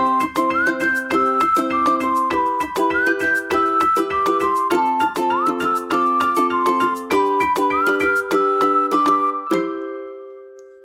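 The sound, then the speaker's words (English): A huge Dutch street organ plays a bright, jaunty tune with steady oompah rhythm and piping melody, loud, running continuously for about ten seconds before stopping abruptly. “Lord Belborough would strike up a tune on a huge musical contraption, which I'm reliably informed is called a Dutch organ”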